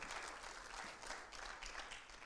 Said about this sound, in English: Come on, give the Lord a hand clap up.